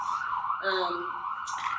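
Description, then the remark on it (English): An emergency vehicle siren wails steadily in a continuous tone as it passes outside a downtown studio, with a brief murmur of voices partway through. “And we'll wait for this beautiful siren to pass.”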